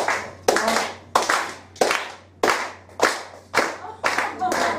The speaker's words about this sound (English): I'm going to attempt to down this pint. Yeah? Can I get an athlete's clap? Come on.